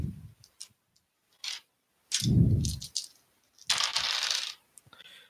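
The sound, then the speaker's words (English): Dice clatter and tumble across a hard tabletop in several short bursts, with a dull rolling thump in the middle, rolled for an attack with a sword slash in a tabletop game, with no one talking. “I'm counting the dice, and then I look at my character sheet for the bonus.”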